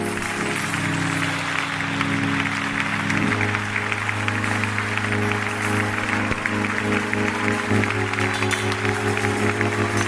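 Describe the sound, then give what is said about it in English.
An audience claps steadily for ten seconds to praise the Lord. It is a dense wash of handclaps over sustained low keyboard or organ chords, with no one speaking. “Now clap your hands and praise the Lord.”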